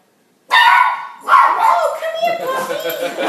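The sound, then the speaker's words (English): A female puppy yips and barks in high, squeaky bursts, the sounds running almost continuously for a few seconds with voices mixed in. “Come here, puppy!”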